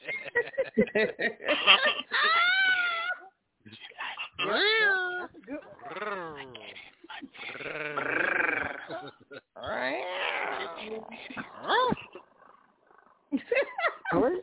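A cat meows over and over, long wavering yowls rising and falling in pitch, loud, with brief pauses between calls for about fourteen seconds.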